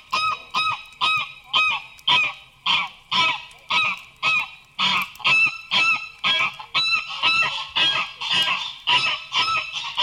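geese honking

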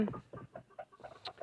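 chickens clucking

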